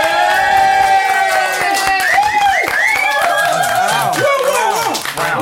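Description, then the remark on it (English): A live crowd claps steadily and cheers loudly, with rising whoops and shouts cutting through dense applause that holds at full strength for the whole stretch. “Thanks. Great show. Hot show. Hot crowd.”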